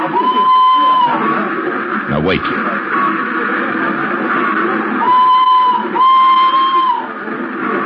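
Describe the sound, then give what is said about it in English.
A dense, steady murmur of many voices fills the scene, a busy crowd on a train platform where people wait for the whistle of a train to Hanover, with a brief spoken line and occasional sustained high tones sounding over it. “Use the crowd for cover.”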